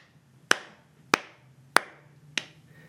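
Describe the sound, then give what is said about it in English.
A slow clap: four sharp, evenly spaced hand claps about half a second apart, each with a brief ringing tail, over a faint low hum and no voices. “slow clap, and ahead of you a little ways, like kind of like leaning against some crates, peeling an orange, is a Farishta you've never seen before.”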